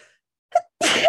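A single sneeze: a short breathy intake followed by a loud, bright burst of air and voice that ends abruptly.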